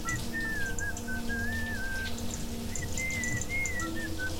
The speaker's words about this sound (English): He keeps whistling.